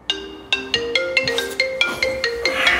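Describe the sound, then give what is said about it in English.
A phone ringtone plays a bright, melodic sequence of electronic chime notes in a steady rhythm, clear, with no voices, as the Vancouver Warriors lacrosse team phones NHL player Paul Bissonnette. “It's a phone call that's awakened the lacrosse community to the power of social media.”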